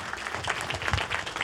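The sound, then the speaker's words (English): A crowd applauds steadily, a dense wash of many hands clapping at an even, sustained loudness with no voices on top, for a brief stretch. “You can applaud that 100%.”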